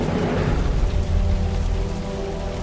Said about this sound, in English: Now it happened in the meantime that the sky became black with clouds and wind, and there was a heavy rain.